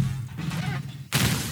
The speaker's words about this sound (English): I love dude, like, when that car crashed and the guy splatted on the sign and the guy got crushed by the car.